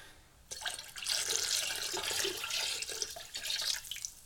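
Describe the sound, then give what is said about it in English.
Peach schnapps pours in a steady, splashy stream for about four seconds, fairly loud, with a burbling liquid hiss throughout and no voices over it. “All right, so I'm going to pour my schnapps in.”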